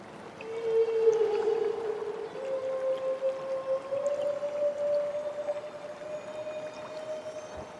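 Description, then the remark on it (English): Humpback whale vocalizations recorded underwater in Southeast Alaska, with a harbor porpoise nearby: a long, drawn-out tonal moan that holds steady, then slowly rises in pitch, over a faint hissing, watery background with no voices. “These humpbacks were recorded underwater where they're keeping company with a harbor porpoise.”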